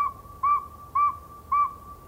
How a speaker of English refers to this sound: This nighttime whistler's a northern saw-whet owl. We like to think that owls only hoot, but these sound a lot like human whistles and are easy to copy.